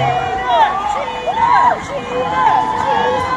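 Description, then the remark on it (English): A concert crowd cheers nonstop on a Saturday, a dense wash of overlapping voices with high, rising and falling screams and whoops piercing through, staying loud and steady throughout. “Because listen to the crowd.”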